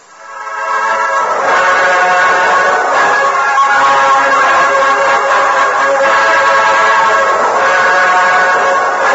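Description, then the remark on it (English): A train pulling away from a station platform into the darkness sounds a long, sustained whistle that swells in quickly and holds steady and loud for several seconds, with a rumbling rail noise beneath and no voices. “When the Lone Ranger, Tonto, and Pete Morgan reached the station platform, the train had disappeared into the darkness.”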